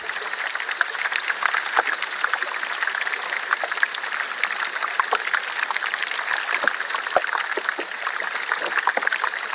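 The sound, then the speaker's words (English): Steady fizzing and crackling, dense with tiny pops and clicks, as a piece of ice melts in water and releases pressurized gas trapped inside it as bubbles; continuous, with no voices. “So then when we pop that piece of ice in water, and it starts melting, and the gas just starts bubbling out of that and generates a little bit of fizz in the ice.”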